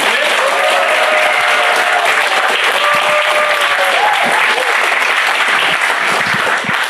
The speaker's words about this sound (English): And with that, let us introduce and give a big round of applause to our guest,